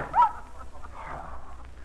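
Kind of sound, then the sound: animal, dogs barking and whimpering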